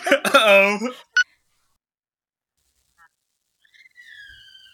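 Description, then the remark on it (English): A loud, high-pitched wavering cry of a boy screaming for about a second, followed by a sharp click, silence, then faint thin whistling tones near the end. “Did you just hear my son screaming?”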